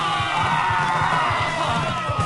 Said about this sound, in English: The audience loved them. They applauded wildly.